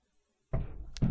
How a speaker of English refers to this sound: Oh yeah, babe, knock twice if you can hear me.